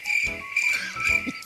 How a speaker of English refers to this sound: What's with the crickets? I haven't said anything yet.